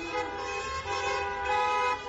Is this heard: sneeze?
no